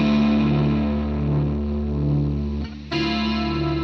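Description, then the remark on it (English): A steady hum and hiss from a guitar's compressor and chorus effects, with a faint wavering chorus-like shimmer, briefly dropping out near the end before resuming. No talking. “I've got a compressor and a chorus that's giving us some noise.”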